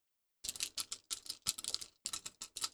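Dice are rolled on a table for a hard deception check in a game, a fast stream of sharp plastic clicks and rattles in bursts lasting a couple of seconds, with no voices.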